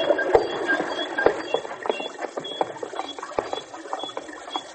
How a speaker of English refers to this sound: Say, let's get away from this infernal water wheel so that we can hear ourselves think.